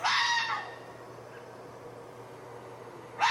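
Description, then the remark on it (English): A male fox's mating call as he courts a dog: a loud, harsh, raspy scream that fades within the first half-second, a long lull with only a faint low hum, then another shriek starting at the very end. “So this is an actual fox making a mating call for you.”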